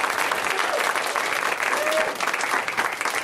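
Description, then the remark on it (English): Steady audience applause fills the whole stretch, a dense crackle of many hands clapping at a constant level, with a few faint whoops or voices rising briefly through it. The audience is applauding the show's hosts at their request. “You can go ahead and applaud our loose meandering that has really opened your mind.”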